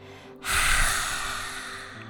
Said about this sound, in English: Inhale gently. Exhale and stick your tongue out as you roar